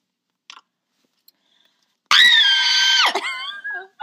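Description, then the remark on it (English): A person lets out a single loud, shrill scream for about two seconds after near silence, then it wavers and trails off with a brief breathy tail, a vocal imitation of the screaming they did during the fourth quarter of a game. “And during fourth quarter, I was so tired of hearing that damn woman say that I started screaming.”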